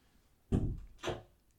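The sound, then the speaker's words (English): A door swings shut with two solid knocks about half a second apart, fairly loud, followed by quiet. “Close our door, please.”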